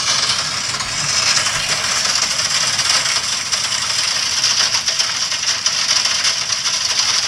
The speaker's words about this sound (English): This is not machine gun fire. This is hail from the other night.